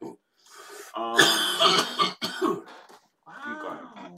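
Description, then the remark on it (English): A loud coughing fit: a cluster of harsh, rapid coughs with strained throat-clearing, a short pause, then a few more raspy coughs trailing off. “It's cough-alicious.”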